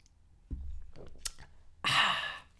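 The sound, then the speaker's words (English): A drink is sipped: a soft low thump and a few small wet clicks and gulps, then a loud, breathy exhale lasting about half a second. No talking. “Let me have a sip of this drink first.”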